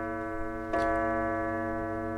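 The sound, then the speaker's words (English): A clock chimes two o'clock, one clear strike over a sustained, resonant bell-like tone that hangs in the air and slowly fades, with no voices. “Eventually exhausted, he drifts off to sleep, but is again woken as the clock chimes two.”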